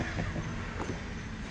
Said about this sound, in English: Should have seen that car went by. I think it was a 1957 show. It's crazy.